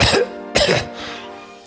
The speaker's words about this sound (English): Sorry, got a little bit of a dry cough going.